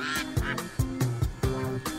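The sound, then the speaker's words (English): A short Quack Alert segment jingle with repeated duck-like quacks punctuating a bouncy rhythm, loud, with no talking. “I love that Quack Alert song.”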